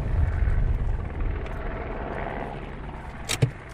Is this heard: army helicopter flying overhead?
yes